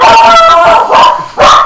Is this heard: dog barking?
yes